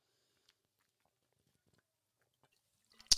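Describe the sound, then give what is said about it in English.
Near-silence with faint scattered mouth clicks, then a quick sip of a freshly opened pink grapefruit drink from Aldi bursts in at the very end, sharp and airy. No one speaks. “I've been fucking actually dying to take a sip of this.”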